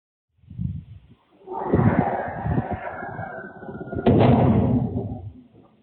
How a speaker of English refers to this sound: In that same neighborhood, an individual's Ring security camera captured the audio of the object crashing in the distance.